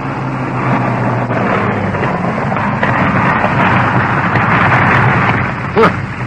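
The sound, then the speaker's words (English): An old piston-engine aircraft drones loudly and steadily as it comes in straight to land, its low rumbling hum continuous throughout, with a brief sharper burst near the end. “Piston engines. There it is.”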